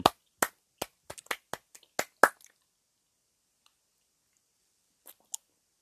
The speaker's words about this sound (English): Some hand claps.